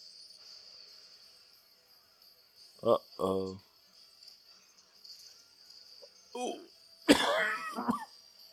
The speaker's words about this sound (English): Sorry for the cough. Allergies are kicking me.